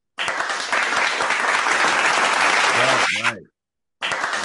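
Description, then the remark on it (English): An applause sound effect: a dense, steady burst of crowd clapping that stops abruptly after about three seconds with a brief tonal blip, then starts again after a short silence. “Just clap. So, I mean, you just love using that thing.”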